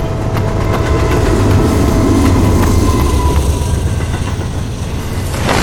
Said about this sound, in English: Looks like a long trestle up ahead. I'd get aboard that train if it weren't so slow.